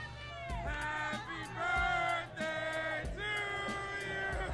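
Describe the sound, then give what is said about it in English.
The Team USA basketball group, led by JaVale McGee, loudly yelling and singing happy birthday to Kevin Durant together in ragged, drawn-out phrases, boisterous, with rowdy shouts mixed into the chorus. “There they are, just a crowd of people yelling happy birthday to Kevin Durant.”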